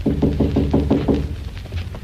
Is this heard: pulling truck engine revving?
no